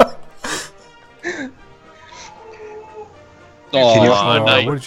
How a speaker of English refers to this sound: He like closed the door. He's like right outside the door and just whining now.